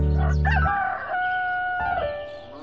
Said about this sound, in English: So they ruffled up their majestic feathers and crowed cock-a-doodle-doo.